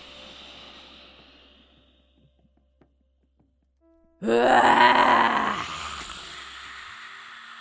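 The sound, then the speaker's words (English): A person imitates a lion's roar with the tongue stuck out as a breathing exercise: a soft inhale and a brief pause, then one loud, forceful, growling exhale that trails off into a breathy hiss. “So I want you to really roar like a lion, really stick that tongue out.”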